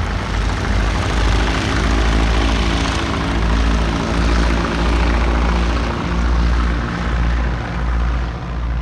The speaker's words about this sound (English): A few minutes to exchange passenger and cargo, hurried wishes of good fortune, a short taxi for takeoff, and the grasshopper rises back up into the moonlight.